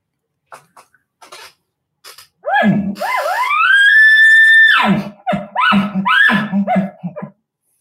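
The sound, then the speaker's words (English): A person imitates an elk roundup bugle: low grunts rise into a long, shrill, sustained whistle, then break into a rapid series of deep, throaty chuckles. It is loud, with no talking. “So that's basically a roundup bugle.”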